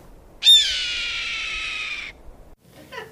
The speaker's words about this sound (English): So the here's the red tail hawk.